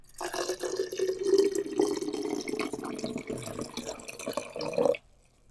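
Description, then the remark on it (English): Water pours steadily into a quart-size glass jar holding blueberries for about five seconds, 2 cups (1 pint) of water in all, a continuous gurgling splash that rises slightly in pitch as the jar fills, then stops abruptly. “We're going to be adding 2 cups of water, 1 pint of water into our quart size jar.”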